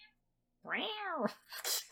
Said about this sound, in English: My cat. She wants to help.